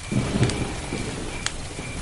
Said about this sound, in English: Nice stereo separation here. The thunderclaps happen from different sides, the occasional hoot and chirrups over and above the background crickets there come from different places.